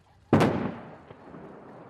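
A large explosion at North Korea's nuclear test site erupts with a sudden, loud boom that rolls into a long, fading rumble, followed a moment later by a fainter second thud, as explosives blow up a tunnel entrance.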